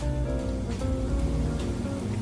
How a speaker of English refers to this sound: And just a little bit, I got some mandarin orange sparkling water. And we're just going to put a little splash on that, like so.